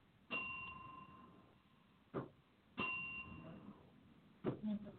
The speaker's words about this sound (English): For whom the bell tolls. It tolls for thee.